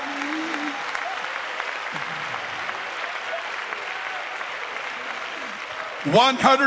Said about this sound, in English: Do you want to clap your hands with me and just love the Lord?